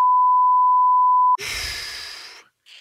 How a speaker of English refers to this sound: We'll beep that bit out as well. Yeah, beep that out.